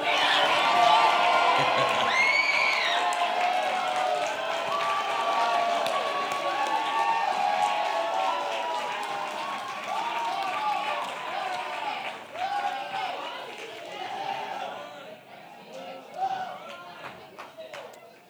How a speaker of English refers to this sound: to let you say thank you to them by yelling and shouting words of thanks to them. I'm gonna count to three, and when I do it, find your youth leader, face them, and make them uncomfortable by yelling that you love them. One, two, three, go!